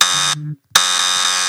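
A harsh, loud electronic alarm buzzer blares, cuts out briefly into a short low tone and silence, then blasts again at full strength, piercing.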